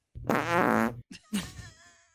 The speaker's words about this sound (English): That sounds like a fart.